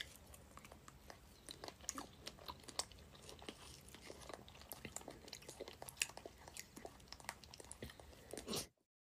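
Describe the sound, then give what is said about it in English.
A woman in a video chews food: crunchy chewing goes on steadily for several seconds, a rapid irregular run of wet bites and crackles with no talking, ending abruptly. “I mean, I know you hate chewing.”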